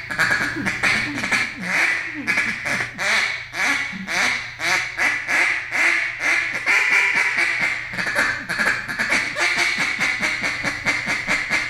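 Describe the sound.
A duck call blown as a hiccup confidence call, meant to get ducks to sit down, in a long, steady run of short raspy quacks with a hiccuping rhythm, loud and continuous for about twelve seconds with no talking.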